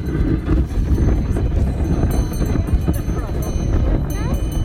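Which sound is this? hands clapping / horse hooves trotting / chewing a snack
horse hooves trotting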